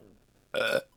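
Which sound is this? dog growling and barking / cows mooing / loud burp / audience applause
loud burp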